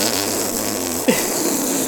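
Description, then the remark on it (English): A chair gives one brief, rising squeak about halfway through, a little like a fart, standing out over a steady background hiss. Nobody speaks. “There's a little squeak in them, though, so depending on the sound of your fart, it could pass.”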